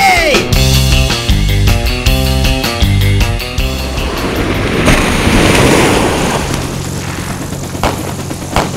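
A rhythmic musical passage plays for a few seconds, then gives way to a loud, broad rushing roar of ocean surf, waves crashing and washing steadily.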